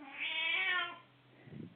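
A single drawn-out meow from Franny, an 18-year-old blind female cat, fairly loud, rising then fading over about a second, followed by a soft low rustle.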